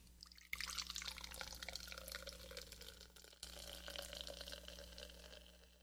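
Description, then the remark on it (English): Ice-cold beer pours steadily from a freshly opened pop-top can into a glass, a bubbling gush with a brief pause midway before it resumes, over a low steady hum and no talking. “And this is ice cold. So we'll give it a pour into our glass.”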